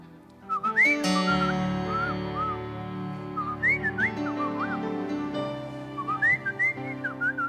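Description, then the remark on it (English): A person whistles a birdlike song of short chirps and swooping, rising-and-falling warbles in several bursts, carried over a steady, sustained musical tone underneath. “Some of you need a little bird to sing to you right now.”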